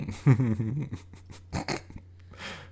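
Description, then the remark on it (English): A dog named Quickie makes short vocal noises, a whiny, grumbling burst followed by a couple of briefer yips and a soft huff, over a low steady hum. “The dog's name is Quickie.”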